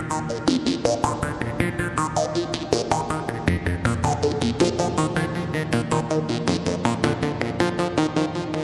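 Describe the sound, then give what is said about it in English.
A steady, pulsing music track with a hall reverb effect being faded up while a phaser effect is faded out, its rhythmic notes blurring into a lingering wash of echo. Loud and continuous, with no voices. “And I'm going to fade that phaser out now and just give you a taste of the reverb.”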